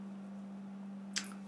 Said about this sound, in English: I'm going to take a little sip of my water here. Thank you for your patience with that.